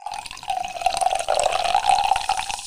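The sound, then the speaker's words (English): Tonic water pours steadily from a bottle and spills over, a continuous splashing gush with a rising fizzy tone as it fills and overflows, with no voices. “So I just literally just poured all over.”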